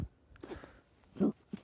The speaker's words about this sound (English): Oh, I burped.